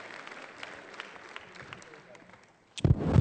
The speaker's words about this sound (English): Let's give these guys a round of applause as they're seated today. Love you guys.